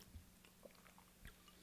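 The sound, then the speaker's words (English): Quiet chewing of soft raspberry chunks from a glass of sangria, with a few moist, irregular bites and squishes spread over a low background hum. No one speaks. “Ooh, I'm chewing chunks over here.”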